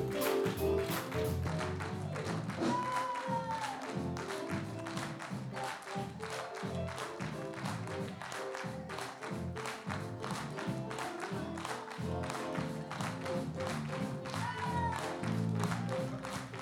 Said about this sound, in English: So all of you clap on the off the beat, off the beat. Now that, kachaka, kachaka, kachaka, kachaka, that's people clapping on the beat while the rest of us are clapping off the beat.